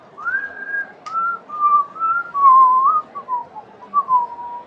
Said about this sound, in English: … starts whistling, just sort of in a low, low pitch, that whistle that you had heard before.